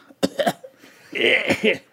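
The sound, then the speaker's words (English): Coughing: two or three sharp, quick coughs, then a longer, harsh, raspy coughing fit with a couple of hacking bursts at the end, no talking. “Sorry, my cough smell sounds a lot like a opening of a can.”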